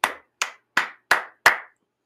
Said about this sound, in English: Anyways, I don't see how that's not a correctable movement, right? Hold out one hand, use the other hand to repeatedly smack the palm of held out hand.